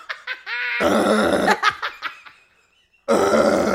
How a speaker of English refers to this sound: Number one. The way you also yell as you burp.